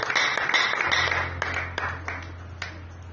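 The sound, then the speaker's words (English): A young boy claps his hands during a sermon, in a loose, slowing rhythm: several sharp claps spaced apart over a steady low hum, with no one talking. “Even a young boy is clapping his hand.”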